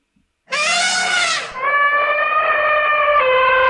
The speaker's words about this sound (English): Please name me a beastie you'd like to hear. Elephant.